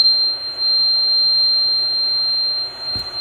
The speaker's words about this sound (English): Alright, yeah, I went high on that one and then jerked it down low. Okay, so, now you've heard those two different tones, right?